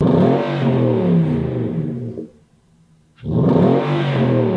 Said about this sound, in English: So because of that, the real way to understand the magic of Bortle exhaust and to understand the polyphonic technology that is bestowed on each exhaust manufactured from there is not on a 32 by 32 mini LED sign that scrolls. Mm-hmm. It's just this.